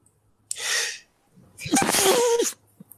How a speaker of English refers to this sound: I'm going to sneeze. Bless you.